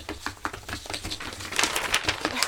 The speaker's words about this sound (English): Where should I put the ones that we've done? Should I just put them Put them up there. Well, I'm shuffling my papers now.